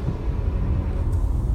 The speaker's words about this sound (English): Today, a different episode because I'm recording out of the car because I'm driving to the office to work right now.